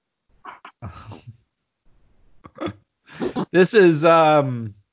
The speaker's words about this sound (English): Step on a dog toy.